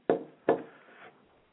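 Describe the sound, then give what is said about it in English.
Two firm knocks on a wooden door, spaced about half a second apart, fairly loud, with a brief hollow ring after the second and no voices. “Jesus, through the Holy Ghost, is knocking on hearts.”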